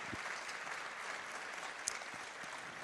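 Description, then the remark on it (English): An audience claps for the worship team, a steady dense wash of many hands applauding at an even level throughout, with no voices rising above it. “Can we just give a clap for the worship team?”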